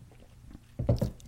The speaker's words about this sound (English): All right, I'm going to take a sip of water before I dive into this.